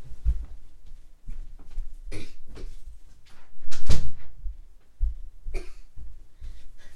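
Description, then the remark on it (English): A bedroom door swings shut with a solid thump near the middle, surrounded by scattered shuffling and handling knocks in a quiet room, with no one talking. “Just needed to close my door because there was some noise outside of my room.”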